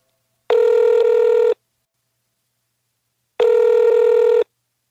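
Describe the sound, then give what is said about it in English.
Two steady electronic ringback tones from a telephone line while calling numbers found online and in 20th century phone books, each about a second long, separated by a few seconds of silence. Clear and fairly loud, with no voices. “Over the course of a couple of days, we scoured the internet and the 20th century phone books and called hundreds of numbers of what could be either of the original researchers, Dr.”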